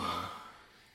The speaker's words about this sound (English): That huge yawn.